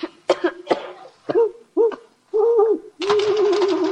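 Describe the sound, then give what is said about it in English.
Several low, hollow owl hoots repeat in short bursts, some with sharp breathy onsets, ending in a longer wavering call; the sounds are fairly loud, with no talking. “It's an owl, Margaret. That's all it is, just an owl.”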